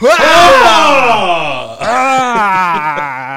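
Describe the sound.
A voice lets out loud, exaggerated moaning and yelling in two long, drawn-out wails that slide downward in pitch, intense, imitating over-the-top Brazilian porn-style sexual moans.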